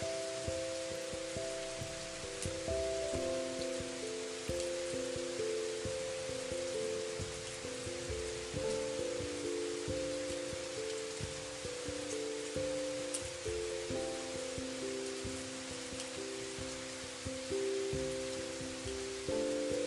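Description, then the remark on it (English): Steady rain patters on a hard surface in a dense, continuous hiss with scattered droplet ticks, accompanied by soft sustained musical tones drifting underneath, no voices present. “Rain meditation sound therapy”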